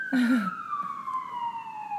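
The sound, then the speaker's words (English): An emergency vehicle siren sound effect wails steadily with a long, slowly falling tone, while a brief voice-like sound rises at the very start. “I feel like people listening while they're driving are just going to keep pulling over, thinking like cops are like, ambulance are going by.”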